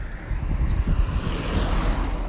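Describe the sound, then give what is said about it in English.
A car speeding past, a loud, steady engine roar with a deep rumble and broad rushing whoosh that fills the whole moment, with no one talking. “Here comes another one speeding.”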